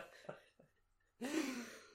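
Two short breathy catches lead into a long, drawn-out yawn, a voiced open-mouthed groan that swells and fades over about a second, fairly loud with no talking.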